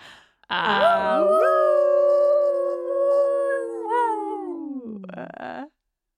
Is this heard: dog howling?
yes